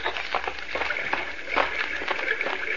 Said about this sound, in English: Oh, I think I hear running water. Yes, you're right.